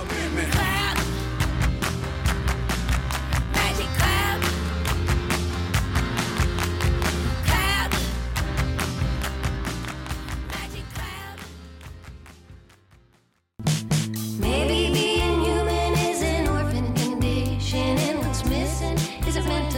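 A full-band song with a singing violin line over a steady, driving beat, loud throughout, with a brief near-silent break about two-thirds in before the music kicks back in.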